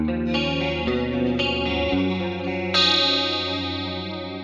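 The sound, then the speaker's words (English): A Jackson Virtuoso electric guitar, with its pickup selector in position 2 (both humbuckers in parallel with a notch filter), plays a few sustained, chorus-treated chords with a bright, slightly gritty tone, new strums entering every second or so and ringing out clear. “Jackson Virtuoso Guitar: the plugged-in review”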